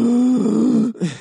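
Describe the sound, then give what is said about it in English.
A voice imitates forceful breathing: a long, loud, strained groaning exhale lasting almost a second, a brief break, then the start of another heavy breath. “He's like, sorry, it was my regular breathing time.”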